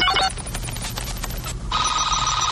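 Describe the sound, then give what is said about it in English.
Movie-style computer sound effects: a short electronic beeping burst, a stretch of rapid clicky static, then a steady high-pitched two-tone electronic hum, fairly loud with no voices. “Except for the computer sound effects.”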